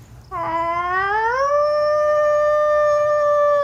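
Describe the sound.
A person imitates a wolf howl: one long, loud voiced tone that starts low, swoops upward, then holds steady for several seconds with no talking.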